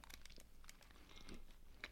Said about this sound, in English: Tougher. Glad I chewed on this side of my mouth. I had to switch sides.